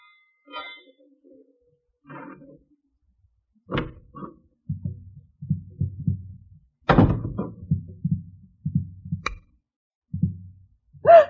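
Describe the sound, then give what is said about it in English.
A key rattles and clicks in a door lock around midnight, followed by scattered metallic clicks and a few dull door thunks, moderately loud, with soft low rumbling movement in between. “The sound of a key in the lock of the door.”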